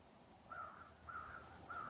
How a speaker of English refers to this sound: Raven calling now.